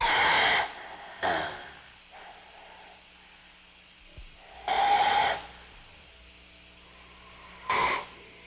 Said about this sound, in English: there's a breathing sound, almost like a gas mask or something. Did you notice that? I listened to the intro of that one a couple times, and I was like, is he breathing? Is he barfing? What's going on there? Could be either, I guess.